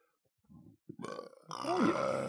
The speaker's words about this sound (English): Oh, got a burp.